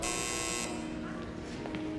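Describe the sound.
An office intercom buzzer gives one loud, harsh electric buzz lasting under a second, then cuts off, leaving a steady lower hum with faint voices murmuring underneath.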